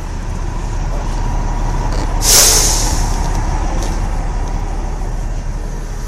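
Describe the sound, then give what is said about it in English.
A city bus idles with a steady low engine rumble, then lets out a sharp, loud hiss of air brakes partway through before the rumble continues. No one speaks. “There were, quite a few other refugees that were getting off the bus and getting on the bus to go to work.”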